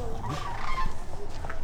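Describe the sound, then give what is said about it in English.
Rolling, rattling bugle calls of sandhill cranes overlap continuously from above, a flock of gray cranes flying over a stretch of forest at the Wheeler wildlife refuge, calling together with no one speaking. “He watches and listens as a flock of sandhill cranes soars overhead.”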